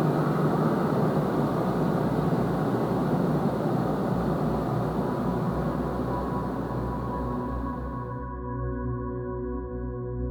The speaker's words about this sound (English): Ion burn positioning complete. Thruster shutdown. Initiating ion engine burn in 5, 4, 3, 2, 1. Ignition. Ion engine shutdown in 20 seconds.